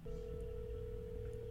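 A steady, unbroken telephone tone hums through the line for about a second and a half, moderately loud over a low background rumble, with no voices, as Tucker Carlson places a call to Trudeau's media line.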